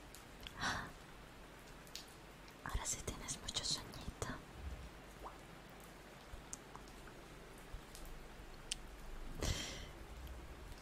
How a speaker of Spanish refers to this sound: Sí, todavía está lloviendo. Parece que va a llover toda la noche.